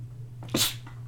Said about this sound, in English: … just sneezed. Just sneezed. Sneezed on the podcast. He's got a quiet sneeze.